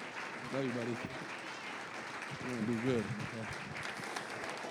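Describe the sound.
A crowd claps steadily throughout, a dense, roomy wash of applause, with a couple of voices calling out briefly over the clapping.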